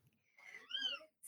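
A single drawn-out cat meow, rising and falling in pitch, clear, followed by a brief burst of noise at the end.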